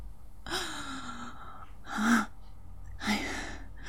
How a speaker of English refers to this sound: I gasp a sudden breath as if I hadn't been breathing at all. For all I know, I hadn't been.